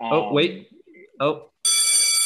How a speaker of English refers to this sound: And there's the bell again. Wow, math class was really short.